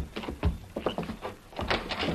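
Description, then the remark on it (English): A house door is opened with a string of clunks and rattles, several sharp knocks and scrapes spread over a couple of seconds, moderately loud and without anyone speaking. “Open the door, you go in first.”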